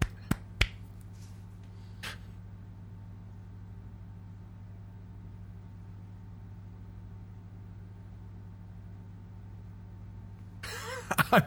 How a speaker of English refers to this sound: Love to clap before going to the film.